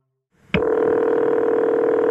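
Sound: telephone dialing tones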